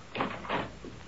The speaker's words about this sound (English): Open the door